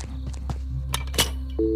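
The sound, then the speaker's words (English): A couple of clunky handset knocks and clicks over a low steady hum, then a telephone dial tone switches on near the end, a steady two-note drone at moderate volume. “I've got a dial tone.”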